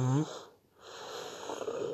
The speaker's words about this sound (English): Oh God, I don't know why I'm yawning so much now.